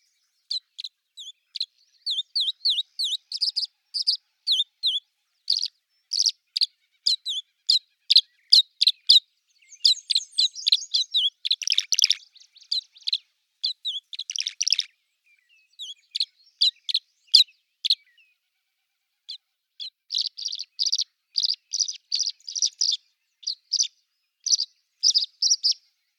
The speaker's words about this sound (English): So, here is the tree swallow song.